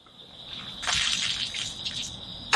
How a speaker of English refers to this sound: He throws up.